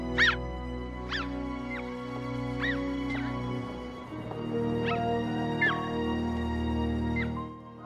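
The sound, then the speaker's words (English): A small dog whimpers in a string of high, thin squeaky cries, about eight in quick, uneven succession, fairly clear over a steady, low musical drone. No one speaks. “That dog is just not my kind of dog.”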